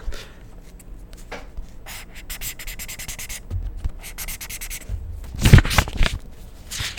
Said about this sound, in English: Alright, so I'm not gonna highlight this Bible because I don't highlight this Bible, but I'm going, hold on, I'm gonna move my phone. But this is what it would sound like if I highlighted something on the Bible.